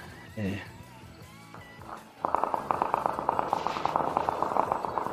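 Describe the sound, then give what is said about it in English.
Distant gunshots from a conflict involving the Taliban crackle in rapid, overlapping volleys that start abruptly midway and continue unbroken to the end, after a quieter opening with a brief high-pitched cry. “From everywhere, I hear the sounds of shooting, gunfire.”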